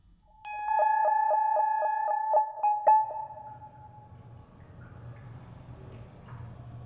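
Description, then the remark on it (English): Part of a sound piece called Choir at the Whitney museum, heard on entering: a quick, even run of about nine bright, pitched plinks like melodic water droplets from a leak, ringing out before fading into a soft, low hum. “They might hear droplets of water, as if the Whitney has sprung a leak, a serious one.”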